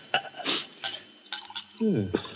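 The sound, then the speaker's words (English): Several light clinks of glassware, then a short gurgling pour of brandy into a glass, all fairly quiet with no talking. “Then perhaps you wouldn't mind pouring me a little. My doctor allows brandy, though I'm forbidden spirits.”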